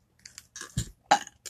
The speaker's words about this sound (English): Oh, yes, that's fresh burp.